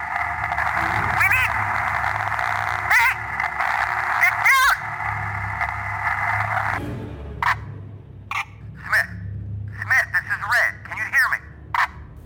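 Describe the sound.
A crackling, garbled radio transmission of a panicked voice through a headset: a steady tinny static hiss for several seconds, then choppy bursts of distorted, unintelligible voice breaking through the narrow, thin-sounding channel.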